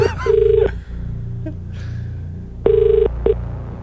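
A mobile phone rings with loud, bright electronic tones in short bursts separated by a pause, over a low steady background hum. No one speaks.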